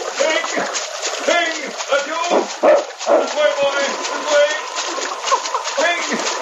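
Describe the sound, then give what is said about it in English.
A dog barks and yelps in short, repeated bursts while water splashes and churns continuously around it, fairly loud, as the dog and a man swim through a swift river current toward the riverbank. “The great dog and his master struck out desperately for the riverbank, but the current was swift and treacherous.”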